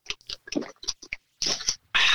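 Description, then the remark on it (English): Wet gulping sounds of someone drinking: a run of short mouth clicks and swallows, then a longer sloshing gulp and a final burst of rushing noise at the end, with no talking. “Another gulp.”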